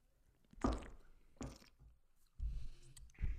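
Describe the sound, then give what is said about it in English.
Wet sipping of a foamy bourbon barrel beer: two short slurping pulls, then a longer gulp and swallow, with no one talking. “So I'm going to take a little sip.”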